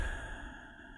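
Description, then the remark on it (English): A slow, deep breath drawn in through the nose, soft, a steady airy hiss that gradually fades with no talking. “Breathing in through your nose and”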